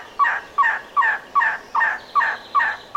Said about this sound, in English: Rare and spectacular elegant trogons are also found here.